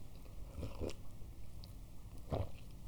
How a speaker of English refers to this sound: And I'm thinking about how I want to take another sip. So I'm going to do that.